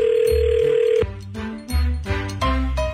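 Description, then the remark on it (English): A telephone rings as a prank phone call begins: a steady electronic tone for about a second, then a run of changing tones with strong low hum. It is clear, with no talking. “here it is. The prank phone call to Brad.”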